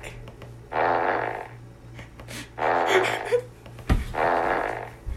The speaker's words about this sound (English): We're just playing the fart sound effect over and over again.